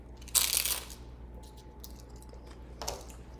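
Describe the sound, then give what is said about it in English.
A crisp crunch as someone bites into a crunchy appetizer, followed by quieter chewing and a second short crunch near the end, with no talking. “It's going to be so crunchy, so sorry.”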